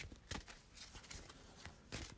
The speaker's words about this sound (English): So I just now noted that I have 2 quick thinking in my hand. I gotta shuffle that back in my deck.